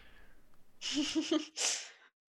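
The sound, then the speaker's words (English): A person coughs, a rough, choppy burst followed by a second harsh cough, fairly loud with no talking over it. “So pass it off to one of you to continue the conversation, because I've talked a lot and I'm gonna cough now.”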